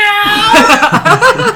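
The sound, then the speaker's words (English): A person gives a short, mock cat meow, quickly followed by bursts of giggling laughter. “Meow.”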